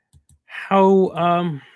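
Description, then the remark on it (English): Two quick, soft clicks of a computer mouse button, close together, as someone tries to open a dice-roller program and clicks the wrong button, followed by a person's drawn-out voiced sound that carries on louder than the clicks. “I failed to do that by clicking the wrong button, but okay, I got it.”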